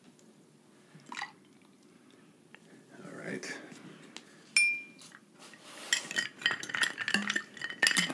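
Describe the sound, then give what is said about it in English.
Adoboloco brand sauce being poured into a drink, followed by clinks of glass and stirring with a utensil that grow busier toward the end, with a brief spoken remark near the start. “I'll let you pour yours.”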